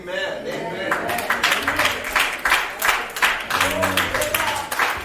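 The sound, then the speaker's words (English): An audience claps and applauds steadily to honor God for their bishop, a dense crowd of hand claps with scattered voices calling out beneath the applause. “And why you clap and celebrate God”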